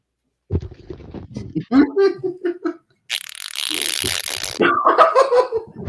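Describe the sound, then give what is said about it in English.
A spluttering, mouth-made fart noise, a loud buzzy raspberry lasting about a second and a half, with a person talking just before and after it. “Oh, I pretend you made a fart noise.”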